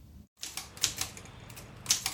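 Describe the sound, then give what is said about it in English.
Mechanical typewriter keys from a collection of around 450 typewriters in India that type in different languages clatter in a quick, uneven burst of sharp clicks, with two louder strikes standing out, fairly clear against a low background hum. “And over in India, one man has collected around 450 typewriters that type in different languages.”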